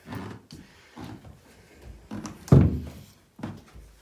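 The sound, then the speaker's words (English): The door of a new studio shuts with a solid, low thunk, preceded and followed by a few softer knocks and shuffling sounds of movement. “I have a door now.”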